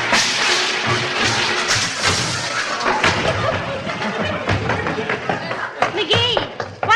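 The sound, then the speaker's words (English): A person falls flat onto eggs on a floor with a heavy thud after their bathrobe tassel is caught in a shut refrigerator door, amid a dense, continuous spill of clattering and crashing noise, loud, with brief vocal cries toward the end. “I shut the refrigerator door on the tassel of my bathrobe, started to walk away, and boom, flat on the hen fruit.”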